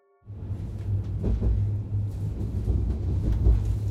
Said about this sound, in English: I'm on the train, on my way to Basel.